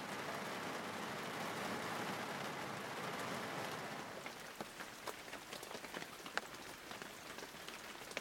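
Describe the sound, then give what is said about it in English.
Steady rain hisses down across the whole stretch, with individual drops pattering more distinctly in the second half as sharp ticks on a hard surface. No voices are present. “The rain is suppressing the smell at least.”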